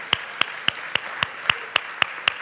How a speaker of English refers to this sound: I think Jesus deserves a bigger round of applause than that. Come on. It's about him.